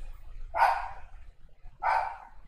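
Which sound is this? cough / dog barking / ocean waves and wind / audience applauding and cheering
dog barking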